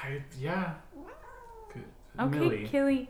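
A cat meows several times, its drawn-out, wavering calls rising and falling, with a louder, insistent cry near the end.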